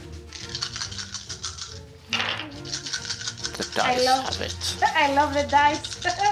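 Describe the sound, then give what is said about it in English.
Real dice rattle and clatter across a tabletop in quick, uneven clicks, set against a steady musical background with voices murmuring. “Dice, I love it. I love the dice.”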